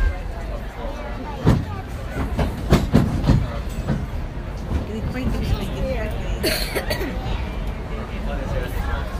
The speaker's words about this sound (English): Welcome aboard the Disneyland Railroad. We're embarking on a Grand Circle tour of the Magic Kingdom.